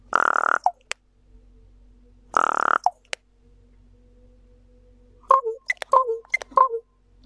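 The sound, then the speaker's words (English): A raven gives two harsh, rasping bursts with sharp clicks between them, then a quick series of hollow, knocking notes, a mechanical-sounding call with no talking. “Next up is one of the more mechanical sounds.”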